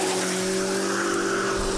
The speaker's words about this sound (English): Jake throws his car into drive, buries the accelerator into the floor mat, and sends himself hurling towards the highway